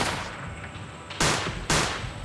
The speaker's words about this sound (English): And all of a sudden, a ruckus broke out outside. We could hear yelling and some screaming, and then a couple of isolated gunshots going back and forth.